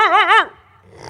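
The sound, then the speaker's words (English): A dog growls and barks in one short, loud, wavering burst, lasting under half a second before fading into quiet. “What's more beautiful, a wild dog?”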